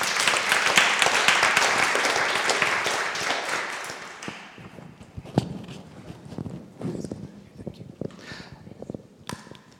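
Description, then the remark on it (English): An audience in a church bursts into a round of applause for a panel, dense and loud at first, then thinning out over a few seconds into scattered claps and a few footsteps and shuffles. “At this time, if we can give our panel a round of applause, that would be marvelous.”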